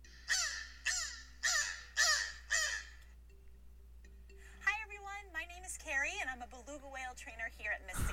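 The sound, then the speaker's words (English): A beluga whale calls with five harsh, raspy caws much like a crow's, evenly spaced. After a short silence come a run of squeaky, warbling whistles and chirps. “No, that is a beluga whale.”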